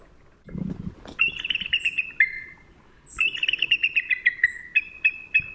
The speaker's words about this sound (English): Now, it's either a bat, a crow, an eagle, or an alligator. Which one is it? Was it eagle? An eagle. Well done